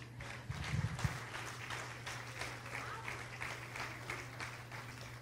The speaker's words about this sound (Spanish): Denle un aplauso